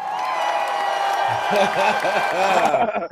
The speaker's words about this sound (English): cue that fucking applause, God.